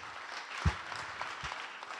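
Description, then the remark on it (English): A crowd claps steadily in a dense, continuous round of applause for people who have served in C-Kids, with a few sharper, louder claps standing out from the wash. “If everybody could just give these people a round of applause.”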